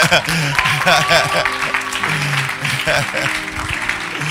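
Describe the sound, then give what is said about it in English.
An audience claps for a speaker's 14 years of marriage, in a dense, steady burst for about four seconds, loud throughout, with voices and cheers mixed into the applause. “If it's for the 14th, then clap better.”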